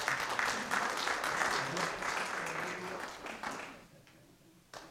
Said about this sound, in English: Thank you. Give them a clap.